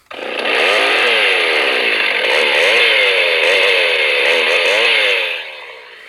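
A prop chainsaw sitting on a coffee table is given a quick rev, its motor loud, the buzzing pitch surging up and down several times over about five seconds before dropping off abruptly. No one speaks.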